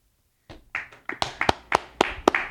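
A short burst of hand clapping after a brief silence, a quick run of sharp claps at an uneven pace, as if from one or two people, with no one talking.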